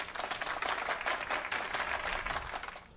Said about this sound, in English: Little golf clap